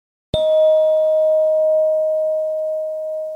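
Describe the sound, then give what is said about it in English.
A single struck tone rings out at a steady mid pitch and slowly fades over a few seconds, with a thin higher overtone dying away sooner. No talking. It is used in a centering exercise where listeners raise their hands when the sound stops. “Zip-up, Tic-Tock and Fading Tone”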